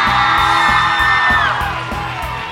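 A crowd cheers loudly in an extra round of applause for a man's suit, with high whoops and yells riding over a dense wash of clapping-like noise and a steady low pulse, easing off slightly toward the end.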